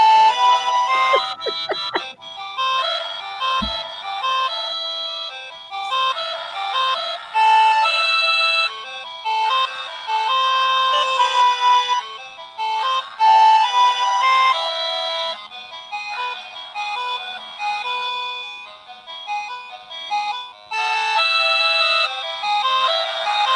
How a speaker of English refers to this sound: This song is like 9 minutes long, so you shouldn't wait till it finishes.